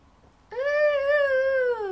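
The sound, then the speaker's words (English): A voice imitates a high-pitched movie scream: one loud, sustained shriek lasting about a second and a half, holding a steady pitch before sliding slightly down at the end, with no talking. “That was a really good impression.”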